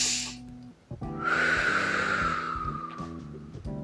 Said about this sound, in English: I sound like the wonderful whistling wind of the west. why am I whistling there?